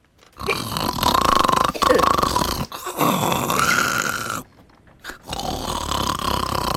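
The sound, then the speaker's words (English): A voice loudly imitates drunken snoring: three long, rasping, gurgly snorts with a burp-like quality, separated by brief pauses. “Treble, you snore loudly. Capri, you snore drunkenly.”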